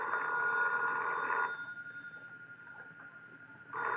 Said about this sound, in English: That's your phone, Mr. Austin.